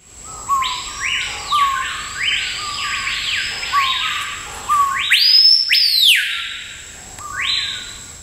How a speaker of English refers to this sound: That's the male screaming pia, which is related to the white bellbird and lives in the same areas in South America.